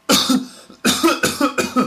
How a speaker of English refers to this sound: A cough, I've got a cough, and that means you're doing this a lot.